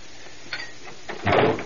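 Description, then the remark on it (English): A door is shut with a solid thud, preceded by a couple of faint clicks and rattles as it swings closed. No one speaks. “I didn't say shut the door.”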